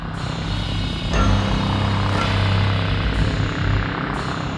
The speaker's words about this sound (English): Like that could be a hammer and a bee buzzing. That's scary. I don't like that. You don't know what it is. It's out there.